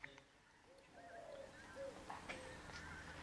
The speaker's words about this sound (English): I'm just outside the shrine, amongst the trees and the birds, and I'm about to do my afternoon prayer.